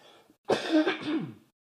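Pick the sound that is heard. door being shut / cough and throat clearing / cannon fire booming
cough and throat clearing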